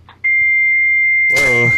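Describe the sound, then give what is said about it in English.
A loud, steady high-pitched fax answering tone sounds over the phone line without a break. Near the end, a voice starts talking over the continuing tone. “Fax machine.”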